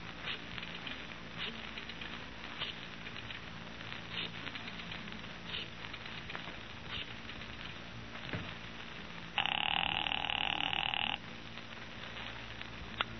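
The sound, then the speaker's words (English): A telephone rings once in an office, a loud buzzing burst lasting about two seconds, over a steady crackling, rattling background noise with no one talking. “I've got an important phone call to make.”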